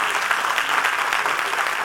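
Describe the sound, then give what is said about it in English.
A church audience claps together, a dense, steady wash of many hands at an even loudness throughout, with no distinct voices standing out. “Everybody didn't clap.”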